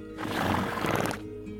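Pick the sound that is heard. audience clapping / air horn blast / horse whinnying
horse whinnying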